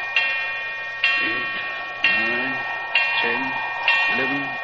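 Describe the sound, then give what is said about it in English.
A clock strikes midnight in twelve slow, steady strokes about once a second, each ringing tone swelling and fading into the next, with muffled voices murmuring underneath. “What a clock. Sounds like the knell of doom.”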